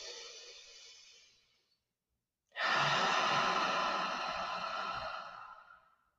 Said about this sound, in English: In through the nose, out through the mouth. With each inhale, you're deepening your breath. And with each exhale, you're softening the muscles in your body.